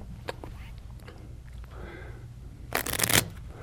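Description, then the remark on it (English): A deck of playing cards is shuffled by a participant during a magic trick, with a few light taps and handling noises before a loud, rapid riffle burst lasting about half a second near the end. “Now I want you to take and give that deck a shuffle.”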